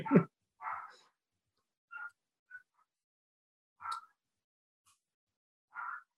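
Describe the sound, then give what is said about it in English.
Dogs barking in a loose, irregular series of about six short yaps, fairly faint, with brief silences between the barks and no talking. “They're barking.”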